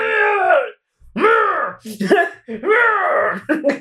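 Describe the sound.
A man bellows a series of loud, strained, drawn-out screams in an impression of Kratos from God of War mixed with Shao Kahn, three long roaring yells separated by brief pauses and ragged breaths.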